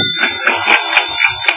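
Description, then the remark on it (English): A telephone rings at about 1 in the morning, waking a sleeper, with a rapid, pulsing high-pitched electronic trill that repeats steadily for the whole stretch, fairly loud, with no voices. “But the persistent ringing of my phone yanked me awake.”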